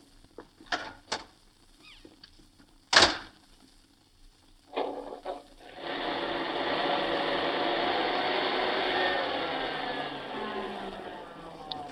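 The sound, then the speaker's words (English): A few sharp clicks and knocks, like a car door, give way to a 1939 sport roadster's engine catching and settling into a steady, loud, rushing drone as the car is pulled out and drives away. “Well, then I'll pull out the car.”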